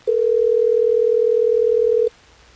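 A steady, loud telephone dial tone hums at one unbroken pitch for about two seconds as radio hosts at Hot 101.5 in Tampa Bay place a call, then cuts off abruptly into quiet background.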